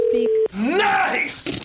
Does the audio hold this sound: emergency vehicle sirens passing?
no